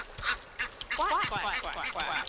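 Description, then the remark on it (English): A burst of duck quacking, with several nasal, raspy calls following one another in quick succession, moderately loud. “We have a lot of geese, a lot of ducks, a lot of swans.”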